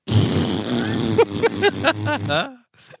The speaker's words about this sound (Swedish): Lyssna på det här. Det här är det mest exciting ni kommer att höra på en lång period. Fiat Abarth 500.